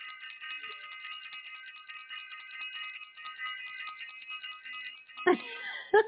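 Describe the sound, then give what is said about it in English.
A bright, shimmering bell rings steadily for several seconds at a moderate level, its tone wavering slightly, before two short, sharp bursts of sound cut in at the end. “I want to ring the bell.”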